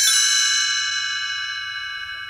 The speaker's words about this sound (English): You will notice time to turn the page when you hear the chimes ring like this.